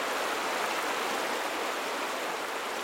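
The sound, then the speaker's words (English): Steady roar of river rapids rushing over jagged rocks, a dense, continuous churning wash of whitewater that stays loud without pause. “I looked across the river. The jagged rocks churned out whitewater. The current propelled fallen trees downstream. Rapids echoed against the rocks.”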